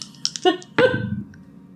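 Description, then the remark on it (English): A few light clicks, then a sharp clatter of two dice rolled for a stealth check tumbling across a hard surface and rattling to a stop, with no voices. “Oh no, he picked up two dice.”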